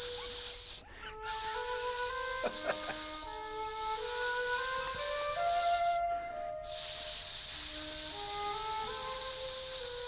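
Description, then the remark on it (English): A voice imitates an asp snake with a long, steady hiss, breaking off twice for brief breaths before hissing on. Faint tonal sounds run underneath. “Could you do an impression of an asp?”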